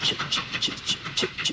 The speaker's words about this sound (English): I want to bring you to this train station. I want you to hear something. So I listen to the train's going off.